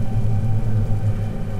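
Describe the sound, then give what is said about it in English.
A deep, continuous rumble, loud and steady throughout, heavy low-end roar like a massive storm churning, with no voices present. “I'm under the storm.”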